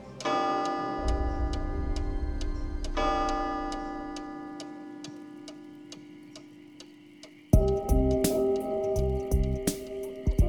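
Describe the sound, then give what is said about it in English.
A clock ticks in a steady, even rhythm, each tick crisp, layered over a sustained droning tone that swells and shifts partway through. No one speaks. “The clock was finished, and the man was nowhere to be seen.”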